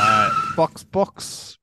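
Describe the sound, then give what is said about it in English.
A loud, sustained tire squeal of a car skidding under braking, cut off abruptly and followed by a couple of short vocal bursts and a brief hiss. “Hit the brakes.”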